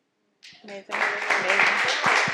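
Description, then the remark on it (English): An audience claps steadily, a dense stream of overlapping hand claps that starts suddenly and stays loud, with crowd voices or cheers mixed in through the applause. “Yeah, keep clapping them up.”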